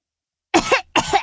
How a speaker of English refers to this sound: Liesel coughed and giggled.